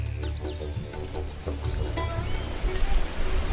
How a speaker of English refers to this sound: It's before sunrise on the boat named the Southern Legend, and we're cruising out towards the mouth of the Milford Sound, right where the Tasman Sea and the Milford Sound meet.